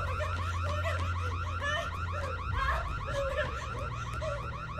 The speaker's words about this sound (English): Oh yeah, you're gonna sound the alarm for all two cops in the city to show up.